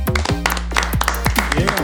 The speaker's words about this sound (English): Yeah. I'll clap to make it seem like more people here.